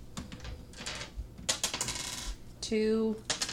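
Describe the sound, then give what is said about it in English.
Two four-sided dice (2d4) are rolled, clattering and tumbling across a hard surface in a quick burst of sharp, irregular clicks, ending with a short bright ringing as one spins to a stop. No one speaks. “Okay, so roll 2d4.”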